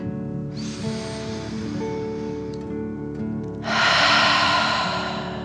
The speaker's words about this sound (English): Again, breathe in through your nose and out through your mouth, pretending you are breathing fire. Deep breath in and out.